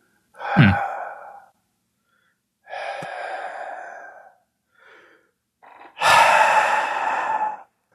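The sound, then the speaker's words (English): Slow, heavy breathing felt as a rush of wind coming in a strange rhythmic fashion: three long, airy breaths spaced a second or two apart, each a loud rushing exhale with faint catches of air between them and no talking. “But all of you feel a rush of wind, and then it takes you a moment to realize it is coming in a strange rhythmic fashion, and then you realize it is breathing.”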